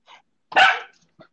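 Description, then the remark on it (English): A dog gives one sharp, loud bark, bracketed by a couple of faint, brief yips just before and after it, with no one talking. “You're fixing to make me do podcasts about dogs now.”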